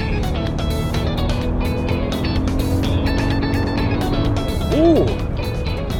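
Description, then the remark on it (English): An SUV with a small engine making 362 horsepower and 400 pound-feet of torque roars under full-throttle acceleration, a loud, steady drone layered with road and wind noise inside the cabin, with a brief vocal exclamation near the end. “This is good power. Pretty impressive from such a little engine.”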